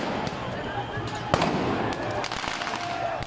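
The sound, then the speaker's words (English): Fireworks bang and crackle in sharp bursts over a dense, noisy street crowd in Paris after Morocco's semi-final loss, with one louder pop near the middle and scattered smaller cracks throughout, echoing off buildings. “Fireworks were set off in Paris, with trouble reported in Lyon, Bordeaux and Nice too.”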